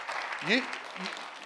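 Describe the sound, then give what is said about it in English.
An audience claps for the speaker's wife in a steady, dense patter throughout, while a single voice rises briefly in a short upward call partway through. “You need to clap your hands for my wife for putting up with me for 42 years.”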